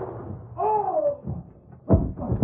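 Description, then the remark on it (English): A sharp, loud gunshot bursts out near the end, preceded by a brief wavering voice-like cry and followed by a second, softer crack. “Look out, Tonto. Gunshot.”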